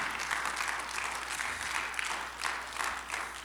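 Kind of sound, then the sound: crowd, audience clapping hands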